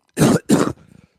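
sneeze

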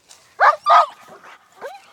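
police dog barking

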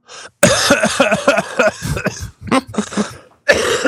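cough

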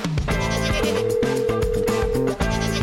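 goat bleating sound effect

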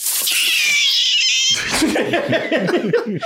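cat yowling

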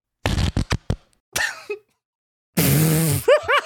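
whoopee cushion fart noise

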